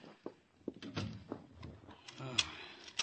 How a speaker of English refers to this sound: The door, bolted, locked.